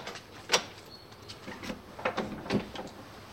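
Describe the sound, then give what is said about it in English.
A heavy door at the threshold of a locked residential environment being worked open or shut, giving a few scattered clunks and knocks over a few seconds, fairly quiet, with no voices. “This door is very significant because when the men first moved in here, stepping across this threshold meant that they were stepping out of the world, out of the social world, into their own locked environment,”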